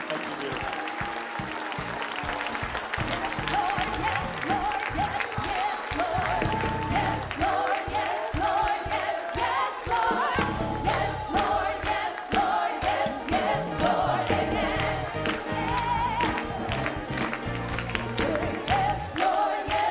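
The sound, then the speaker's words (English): An audience claps their hands to give God glory in a dense, sustained burst of applause lasting the whole stretch, loud and steady, with scattered cheers, whoops and sustained tones mixed in underneath. “Come on, why don't you clap your hands and give God some glory.”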